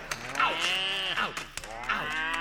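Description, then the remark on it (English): A herd of some 1,000 moving cattle on a roundup in the West moo over one another in long, bellowing calls, some sliding down in pitch, forming a continuous lowing chorus with no talking. “These are truly wonderful moments of solitude, shared only with the unbearable dust, brutal black flies, and the rear end of 1,000 head of moving cattle in the heart of the West.”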